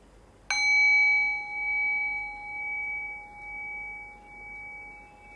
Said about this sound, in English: And I'll ring the sound of the bell. Rest your awareness on the decay of the bell. And as the bell fades, allow the thinking mind to fade along with the bell.